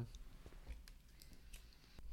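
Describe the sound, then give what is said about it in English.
Quiet, crisp snips and crinkles as scissors cut through plastic snack packaging, several short cuts at an uneven pace, with no talking. “Each snack, can I have the scissors? Each snack comes in a substantial amount of plastic.”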